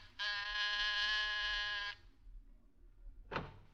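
apartment door buzzer

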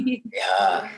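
dog yawning

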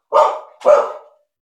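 dogs barking

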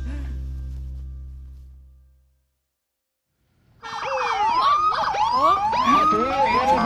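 police car sirens

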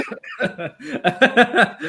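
coughing

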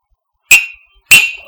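cups clinking

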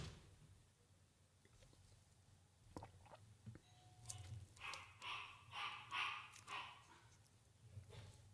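dog

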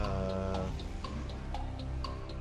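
clock ticking

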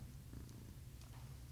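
cat purring

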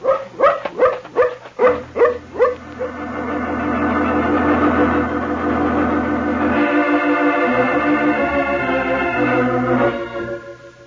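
dog barking

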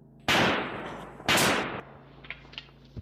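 gunfire

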